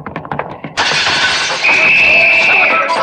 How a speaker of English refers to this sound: That big window in front, Logan? Yeah, watch out for flying glass, Miss Williams. Yeah, my head's down, Captain. Here goes.